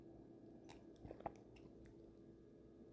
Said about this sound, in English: Having myself a sip of a same old Concord, grape, Welch's, whatever.